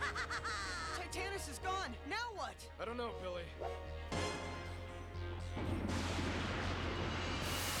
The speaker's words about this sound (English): And that explosion superimposed over it makes you think it's destroyed.